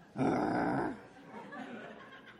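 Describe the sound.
A child's rough growl lasts just under a second, loud, then gives way to faint background murmur.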